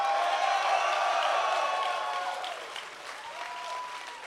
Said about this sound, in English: By the way, the first cheer was what is known as a Freddie Adu cheer.